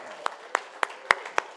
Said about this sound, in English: She can't tell because she's blindfolded, but everyone's clapping right now.